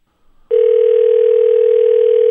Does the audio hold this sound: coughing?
no